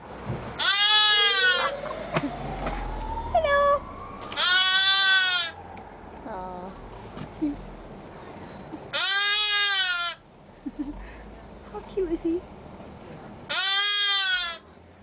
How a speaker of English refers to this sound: Yep, sheep. Sheep. That is a lamb, what appears in the video to be at a petting zoo.